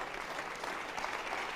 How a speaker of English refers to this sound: You clap your hands.